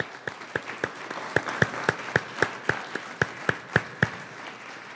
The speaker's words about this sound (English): So first off, I think we owe them a round of applause for doing that.